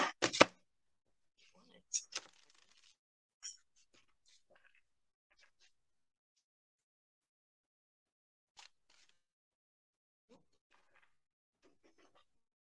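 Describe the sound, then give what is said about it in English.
Shuffling of tarot cards for a weekly Capricorn reading: a loud crisp flurry at the start, a couple of shorter riffles a few seconds later, then sparse faint rustles and taps with long quiet gaps. “Shuffle.”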